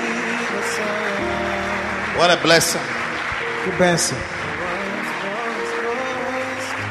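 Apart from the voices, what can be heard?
audience clapping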